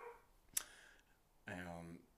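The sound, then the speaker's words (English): A single drawn-out dog bark sounds, preceded by a sharp click, with quiet background and no talking. “That dog's doing mine on.”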